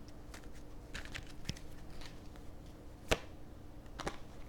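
Tarot cards are handled and drawn for a five-card spread reading, with a few crisp snaps and light irregular clicks over quiet background. No one speaks.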